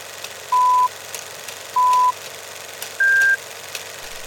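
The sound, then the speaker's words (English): Three evenly spaced electronic countdown beeps signalling when to press play, each a short steady tone, the last one pitched slightly higher, sounding clearly over a faint low background hum with no talking. “we're going to have a little audio indicator here. At three beeps, we're going to start it.”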